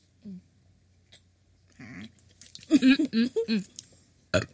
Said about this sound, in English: Excuse me. ASMR! First of all, you don't burp in the microphone. Oh, sorry, excuse me.